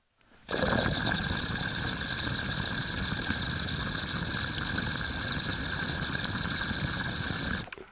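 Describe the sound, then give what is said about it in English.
A steady, continuous bubbling rumble of water through a thick 10 millimeter glass double diffuser in a crushed-opal glass piece, with a thin high whistling chirp riding on top, holding evenly for about seven seconds before cutting off. “Yeah, she has that pretty little like rumble with a little chirp on top.”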